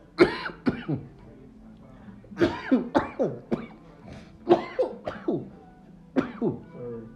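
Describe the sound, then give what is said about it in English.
Repeated harsh coughing in several quick bursts, clustered in short fits of three to five coughs with brief pauses between, fairly loud and with no talking over it. “Bless you.”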